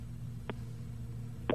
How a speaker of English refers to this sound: All right, fine. Dial tone it is.